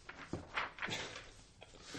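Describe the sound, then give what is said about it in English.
Three quick knocks on a bathroom stall door, fairly soft and evenly spaced, followed by a faint fourth tap and a quiet, hollow room with no voices. “Knock on the stall.”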